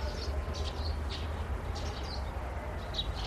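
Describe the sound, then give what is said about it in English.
Faint, scattered bird chirps in the morning come in short bursts over a steady low background rumble, outdoors with no one talking. “Birds chirping.”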